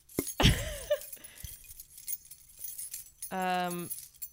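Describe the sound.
Sleigh bells jingle in a quick, bright metallic shake near the start, fading within a second; after a quiet stretch, a single voice sounds briefly at the end.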